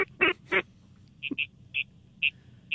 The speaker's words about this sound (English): Get ready. That's the old gray duck call. Get him.